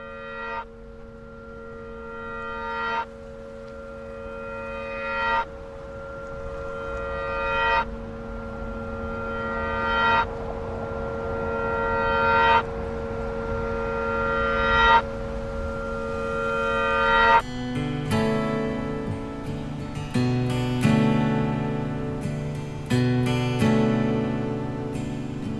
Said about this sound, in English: And I remember you're like, wedding bells, you know, and then you sent me this version that is what we hear on the album, and it has these wedding bells reversed.